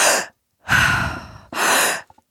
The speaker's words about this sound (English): Yeah, effigy breathwork is it's a mouth breathing style of breathwork. And it's rigorous and intense, and it's meant to alter your state. You are focused on the inhale, breathing through the mouth into the chest.